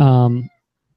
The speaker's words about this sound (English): We've got a visitor here. A kitten cat. Yeah. Hi, Fran. Say hello. he's probably going to be walking around the desk. He's talking a lot.